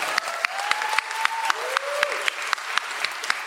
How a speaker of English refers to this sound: So really great. Big round of applause for that, please.